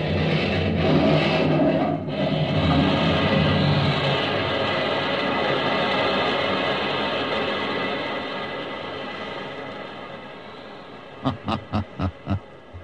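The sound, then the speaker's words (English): A massive explosion, set off with a plunger, blowing up a railway bridge as a train crosses it, a loud sustained roar of crashing and rumbling debris that slowly fades, followed by a quick run of five sharp bangs near the end. “Wait till it hits the middle and then push the plunger. You'll take the whole bridge, you know.”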